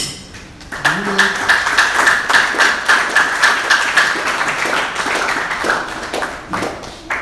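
An audience claps hands together in a steady, rhythmic unison beat in the evening after a prayer, loud and sustained for several seconds, with a faint sustained tone running beneath the clapping.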